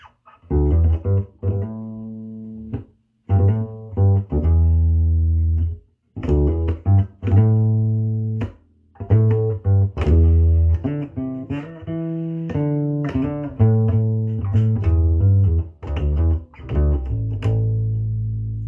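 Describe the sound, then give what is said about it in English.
A bass guitar played through a mudbucker neck pickup, with the pickup selector in third position, gives deep, round, sustained notes in short phrases with brief pauses between them, alone and fairly loud, without any talking. “Let's go to that mudbucker, third position. So neck.”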